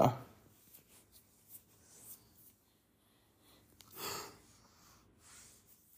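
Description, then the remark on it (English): A tired speaker gives a soft, breathy yawn that swells up around the middle, a drawn-out exhale heard quietly, with faint sniffs and breaths scattered around it and no talking. “If you hear the yawning too much, I do apologize.”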